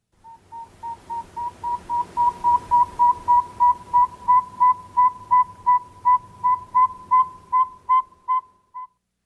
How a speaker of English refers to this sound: But it's actually the northern saw-whet owl